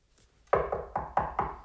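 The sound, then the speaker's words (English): Five firm knocks on a wooden door in a quick, fairly even rhythm, clear with no voices around them. “You hear a knock at the door.”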